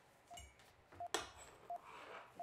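Short, high electronic beeps from a programmed circuit board sound at a steady rhythm, four brief pure tones spaced evenly, with a sharp click and some faint rustling between them.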